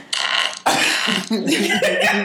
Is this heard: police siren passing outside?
no